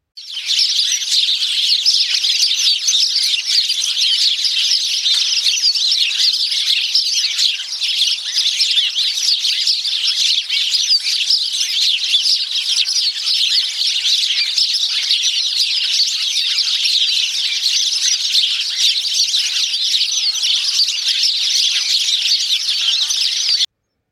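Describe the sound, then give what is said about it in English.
A large flock of songbirds calling all at once, a dense, continuous wall of high chirps and twitters that stays loud and steady for the whole stretch, with no voices. “And here is what a large flock will sound like.”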